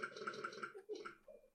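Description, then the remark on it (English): A cartoonish video game sound of a character eating cake: a quick run of rhythmic, throaty chomps, then a short pause and a drawn-out, gurgling belch that trails off. Fairly loud, with no talking over it. “when you eat cake in this game, it makes a disgusting belch noise.”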